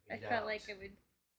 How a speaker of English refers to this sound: Yeah. I wanted to save my gasp until you said fade out, because I felt like it would be intrusive.